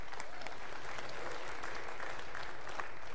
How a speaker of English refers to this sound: You can applaud at any time, because that's marvelous.